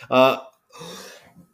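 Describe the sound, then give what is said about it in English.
A harsh cough from a person fighting a cold: a voiced, throaty burst, then a raspy breathy exhale, and another abrupt cough starting right at the end. “excuse me, I'm fighting a cold. I do apologize if I start coughing.”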